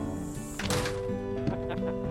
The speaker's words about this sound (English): close the screen door behind me and letting the flies out.